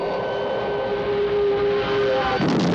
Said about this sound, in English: Anyway, the last Mysteron jet has crashed into a house.